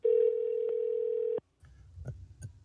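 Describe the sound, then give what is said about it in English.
A single steady, mid-pitched ringing tone of a phone call to a McDonald's restaurant sounds loudly for over a second, then cuts off, leaving faint line noise with a few soft clicks. “We'll call the last one here.”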